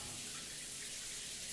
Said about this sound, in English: Ah! Now that's the water we like to bathe in. I'm relaxing my shoulders and leaning my head under the water, doing shower stuff.